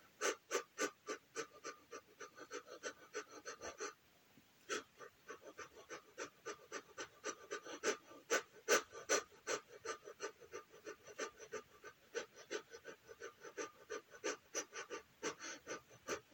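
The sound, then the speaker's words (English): Rapid, rhythmic panting breaths at the start of a meditation, each a short breathy burst repeating about three times a second, with a brief pause near four seconds before the quick breathing resumes. No talking. “And let's begin with those quick breaths.”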